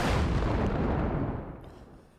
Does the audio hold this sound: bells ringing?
no